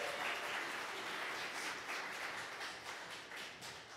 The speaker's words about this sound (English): these guys gave up so much and sacrificed so much to work with us there, and they're our dearest friends, so clap for them as well.